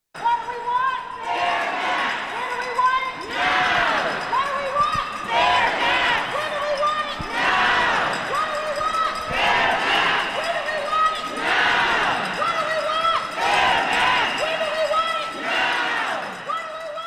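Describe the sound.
A large crowd of protesters against a redistricting bill fills the Wisconsin State Capitol rotunda in Madison on a sunny afternoon, voices rising together in loud, rhythmic chanting bursts every couple of seconds over a steady roar of many people, children blowing whistles.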